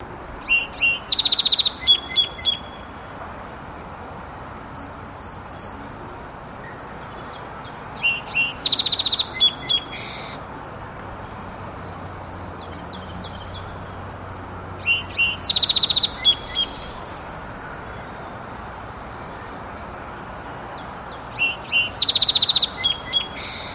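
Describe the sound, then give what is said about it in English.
A song sparrow sings four times at steady intervals, each song opening with a few sharp repeated notes and breaking into quick buzzy trills, clear over a soft hiss of background noise. “remember to listen for the repeated notes at the beginning of each song. There's going to tend to be quite a few trills”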